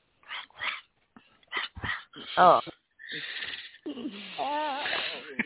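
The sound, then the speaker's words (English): A person imitates a growl from a song, giving a rough, throaty growl-like vocalization in short bursts, mixed with brief talk and a drawn-out raspy voiced sound near the end, fairly loud. “Go ahead and give that growl you gave in that song.”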